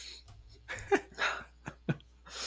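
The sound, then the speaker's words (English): A sleeping dog named Haley snores softly, a few quiet breathy rasps mixed with small scratching clicks as she stirs, running in her sleep with her back legs going; no one speaks. “Haley is snoring and she's running.”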